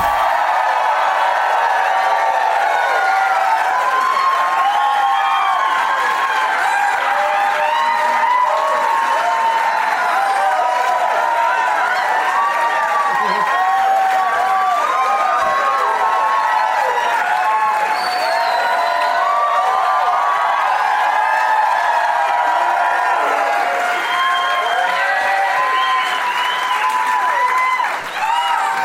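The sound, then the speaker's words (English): A large live crowd cheers and applauds steadily for the whole stretch, a dense wash of clapping with whoops and shouts rising throughout, loud with no break. “All right, you win. You're the best crowd.”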